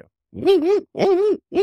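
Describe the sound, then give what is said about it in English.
A person's voice imitates a barred owl call, giving two drawn-out, wavering hoots followed by the start of a third, loud with short pauses between. “In Bard Owl.”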